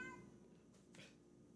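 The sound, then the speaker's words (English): A cat meows once from inside a closet, muffled, its cry rising briefly above a low steady background hum. “And let that cat out of a closet.”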